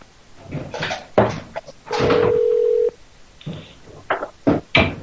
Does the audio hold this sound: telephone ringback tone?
yes